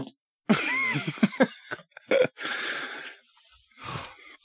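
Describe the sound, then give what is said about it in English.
A drawn-out, sputtering fart, breaking into several rough bursts with a wavering squeaky tone, followed by a few quieter trailing puffs. No one speaks. “I don't know if I should cut that out or leave it or talking about video games and farting.”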